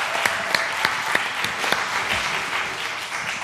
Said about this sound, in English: Give them a round of applause as they come forward.